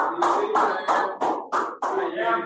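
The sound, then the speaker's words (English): During a post-game basketball press conference, a crowd claps in a loud, steady rhythm. The sharp bursts of many hands arrive every third of a second or so and fill the whole clip, with a faint murmur of voices underneath. “They were obviously applauding my question.”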